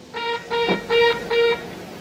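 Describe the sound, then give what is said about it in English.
Four short, loud buzzer blasts in an even rhythm, each a steady harsh tone lasting under half a second, separated by brief gaps, with no voices; a buzzer in a glass booth, buzzed four times by Clara to tell a blindfolded player to start. “Clara blindfolds him and then leads Steven and Dodo over to a glass booth where they can buzz a buzzer to give instructions to the player.”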